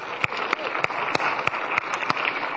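An audience applauds the mothers on Mother's Day: a steady, dense wash of many hands clapping, sharp individual claps popping out of the sustained noise, moderately loud throughout with no talking.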